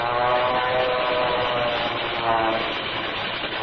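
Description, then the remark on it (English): Loud, continuous airplane engine roar with a droning propeller hum, holding steady throughout with a slight swell partway, as a plane dives on other planes during an aerial battle high in the skies over Lake Sheba. “Hey, look, the second plane has made a dive on them. They're going to it.”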